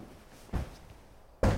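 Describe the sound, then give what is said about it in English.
A front door opens with a low knock, then shuts with a heavier thud about a second later, with otherwise quiet surroundings. “I heard the front door and quickly went to the living room.”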